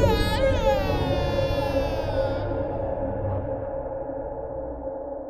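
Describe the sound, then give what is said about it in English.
High, wavering screams ring out and slowly fade into a long, hollow echo over a low rumbling drone, reverberant with no talking. “I fall asleep on the earthen ground around the opening to the sounds of screams echoing in my ears.”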